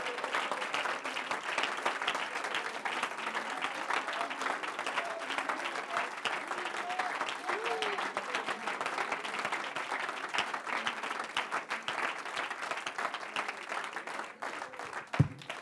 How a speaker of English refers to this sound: Take about 15 seconds and clap your hands, because you got to sit down.